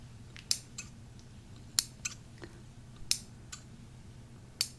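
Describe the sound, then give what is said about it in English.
Scissors snip through packaging to open a package, with a handful of crisp, sharp cuts at irregular intervals over a faint low hum. No one speaks. “I'm going to be using this scissors.”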